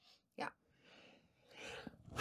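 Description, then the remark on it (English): A single sharp sneeze bursts out, followed by soft breathy exhales and some faint rustling. “Bless you. And that's how we sneeze in this.”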